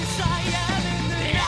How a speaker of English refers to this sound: Oh, these are my screams and they're garbage. This is why I don't do highs. It's all the lows. Which there are some lows in here that I did that I think were pretty good.